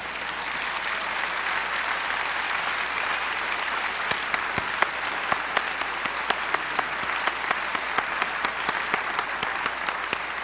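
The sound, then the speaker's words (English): An audience of about 2,000 people applauds steadily, a dense wash of many hands clapping, with sharper individual claps standing out in the second half. No one speaks over it. “It's like 2,000 people in here, and like you don't even know us, and you're all clapping.”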